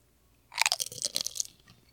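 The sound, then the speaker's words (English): A crisp crunching of a chip being bitten and chewed, a quick burst of brittle crackles lasting about a second, with no talking. “You're really going deep on that chip.”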